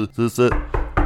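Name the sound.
knock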